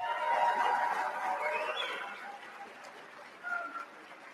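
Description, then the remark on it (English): A crowd at a Republican governor's debate in Texas applauding, a dense wash of clapping that is loudest at the start and gradually thins and fades over a few seconds, with a brief whoop or cheer near the end. “I'm very glad to see you're already excited, because I was just going to tell you, if you're excited to be here at this Republican governor's debate, then show it by giving yourselves a big round of applause.”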